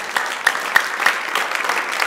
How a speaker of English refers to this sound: Come on, clap for the Lord, everybody.